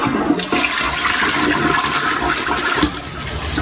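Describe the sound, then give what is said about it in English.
A toilet flushes, a loud continuous rush and gurgle of water that sustains steadily for a few seconds with no voices present. “Will it flush?”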